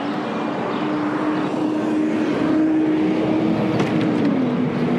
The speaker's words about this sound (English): I'm getting in the car.